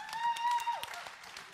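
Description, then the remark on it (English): Scattered applause from an audience on Father's Day, sharp claps pattering unevenly at moderate volume, with a steady whistle-like tone sounding over the first half before sliding downward. “You can applaud all you want.”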